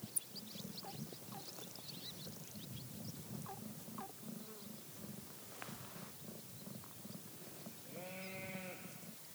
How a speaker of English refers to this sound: Well, we're in an authentic setting with sheep making their distinctive bleating, and there's a buzzard overhead, and we're looking down on High Arnside Farm, the whitewashed farmhouse with the slate barn connected to the actual working farm beyond